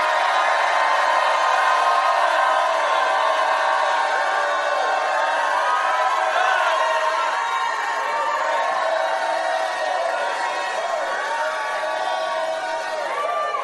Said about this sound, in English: Jump up to your feet and shout like you never shouted in your life.